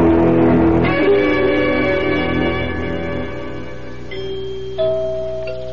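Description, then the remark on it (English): Deep, resonant door chimes of a grand house ring out like a tower bell, struck several times in slow succession, each tone sustaining and slowly fading. Loud, with no voices. “Did you hear the chimes? It sounds like the bell in our tower.”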